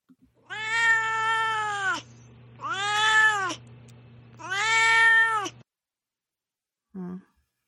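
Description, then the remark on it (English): A cat named Duarte gives three long, drawn-out meows in a row, loud, each wavering slightly in pitch, followed by a pause and one brief, quieter chirp. “All right, well, now it's, of course, time for Duarte's Corner, where my cat Duarte shares his opinions about the book.”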